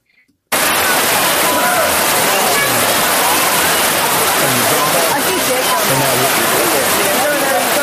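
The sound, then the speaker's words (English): Water rushes steadily over Sliding Rock, a natural rock slide near Asheville, a loud, dense, continuous roar that cuts in abruptly after a brief moment of quiet and holds unbroken. “That water right there that you drop off that little clip down in there.”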